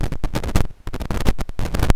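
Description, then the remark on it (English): Loud, harsh static crackles across a phone line in choppy bursts, cutting in and out with brief near-silent gaps, with no voices underneath. “Why am I getting all this ridiculous fucking static?”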